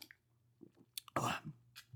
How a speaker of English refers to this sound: All right. Let's take a sip. Cheers. Come on now. Yeah, cheers.